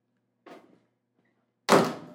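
A studio door is eased shut by people holding the handle: a faint rattle of the handle, a brief pause, then a muffled thunk as it settles into the frame. No one speaks.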